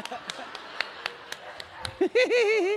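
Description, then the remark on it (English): A handful of sharp, scattered hand claps at an uneven pace, followed by a voice that starts talking and vocalising at the end. “What was that clapping?”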